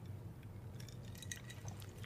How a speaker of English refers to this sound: All right, I'm going to take a quick sip.